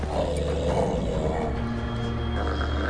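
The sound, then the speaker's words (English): A wolf in a video game growls low and menacingly, a loud, rumbling snarl that holds steady for a few seconds, with no voices over it. “Whoa, wolf.”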